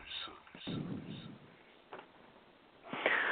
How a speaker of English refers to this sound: You're breathing so hard.